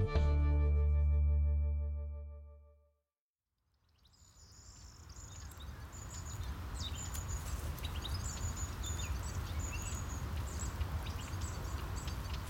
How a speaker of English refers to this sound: This is some tape I got in a field in France this spring. You have to listen closely, but what you're hearing are things like the corn bunting, the European goldfinch, and the zitting cisticola.